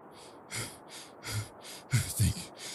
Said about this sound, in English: breathing heavily, sits against the door.